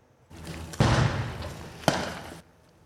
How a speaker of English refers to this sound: Loud bangs pierced the silence on Royal Avenue this afternoon around 1:45. Officers deployed stun grenades and fired their weapons, ending a standoff with a person barricaded inside that home.